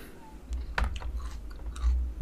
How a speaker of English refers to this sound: I'm chewing. Hold on. Oh, my days. I'm eating lettuce.